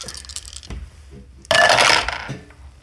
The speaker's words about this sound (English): Go ahead and roll me 3 dice for Linus's Tinker.